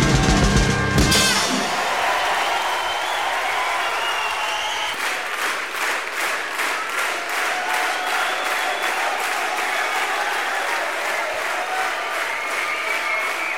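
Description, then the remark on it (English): A large crowd applauds loudly and continuously, with a roar of crowd noise at the start. About a third of the way in, the clapping settles into a steady, rhythmic unison beat. “Yes, I know, I always say it was the crowd screaming for me.”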